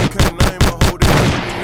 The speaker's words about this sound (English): Yo, if you've been watching, Key does not like when I do the gunshot. She really hates it.